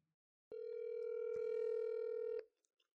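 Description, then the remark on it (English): A steady, loud telephone dial tone hums for about two seconds, then cuts off abruptly, followed by a couple of faint clicks as dialing begins for a phone call. “we decided we were going to talk to you on the phone”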